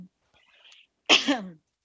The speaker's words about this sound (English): I'm like in the middle of a cough.